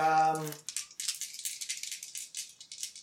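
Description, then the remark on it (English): Dice are rolled for an observation roll at -2 in a tabletop game, rattling and clattering in a steady stream of crisp, bright clicks for about two and a half seconds, following a brief voiced hum at the very start. “Can you make an observation roll at -2?”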